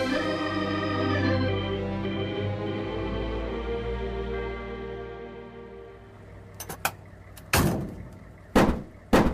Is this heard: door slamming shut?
yes